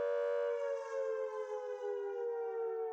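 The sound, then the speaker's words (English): A loud, steady air raid siren sounds the all-clear after a bombing raid, holding one sustained rich tone with no rise or fall in pitch, droning on continuously without any voices. “ground stopped shaking and the enormous catastrophic sounds of dropping bombs ceased, but it was another 10 minutes before the all-clear siren sounded.”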